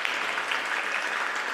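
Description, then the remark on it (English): A crowd of beetles claps steadily for Brambleton T. Beetle, the new ambassador, in a dense, continuous, loud wash of applause, with no gaps and no voices standing out. “Everyone, give Brambleton T a big round of applause.”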